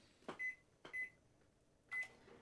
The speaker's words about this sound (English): So I'll let it do that and I'll talk through it because I'm sure a microwave ticking down doesn't make the best radio.